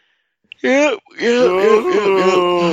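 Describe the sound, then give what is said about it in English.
A person lets out a loud, drawn-out yawn, a short voiced rise, a brief catch of breath, then a long groaning stretch that wavers in pitch. “Yeah, you can do your yawn.”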